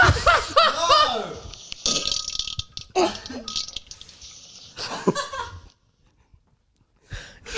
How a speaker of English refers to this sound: you start playing listeners' farts into the mic.